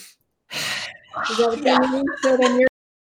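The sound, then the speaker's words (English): A person loudly demonstrates sharp, heavy breathing, as opposed to calm breathing: a harsh, breathy gasp followed by a couple of quick, strained voiced breaths in rapid succession. “It's like, because you're kind of doing this calm breathing as opposed to just like going.”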